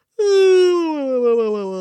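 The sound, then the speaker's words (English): A voice imitates Cornelius the dragon stretching and yawning: one long, loud, throaty moan that starts high and slowly slides lower in pitch, lasting nearly two seconds, with no other sounds. “He stretched. Ugh! He yawned.”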